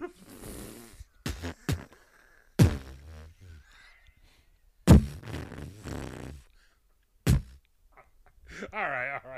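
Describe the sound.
Two men make several loud, sputtering fart noises one after another, with wet raspy rumbles and laughter-like vocal bits between them; they sound like voices imitating farts.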